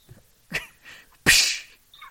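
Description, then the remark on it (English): A sharp, loud bullwhip crack bursts out with a hissing tail, preceded by a smaller, quicker snap; no talking around it. “it sounds like a bullwhip. Making that pop.”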